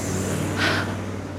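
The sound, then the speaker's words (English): A FedEx delivery truck drives past, its low engine rumble humming steadily while a brief whoosh swells and fades midway. It sounds fairly quiet, with no voices. “Ew, the FedEx truck went by and I think the guy was looking at me.”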